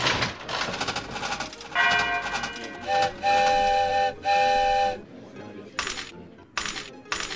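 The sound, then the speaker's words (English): A one-armed bandit slot machine in a computer game whirs through a spin with bright, ringing chime tones in pulses, followed by several short bursts of silver dollar coins clattering out in a $3 payout, fairly loud. “Press the down arrow to review the one-armed bandit's pay table.”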